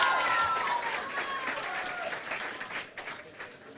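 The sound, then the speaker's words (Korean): An audience applauds, dense clapping sustained throughout at moderate loudness, with some murmuring voices and a faint tonal sound mixed in. “박수 한번 보내주시면 감사하겠습니다.”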